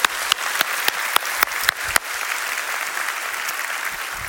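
A church audience breaks into steady applause, with a few sharp, distinct claps standing out at the start before the clapping blends into a dense, even wash of sound that holds to the end.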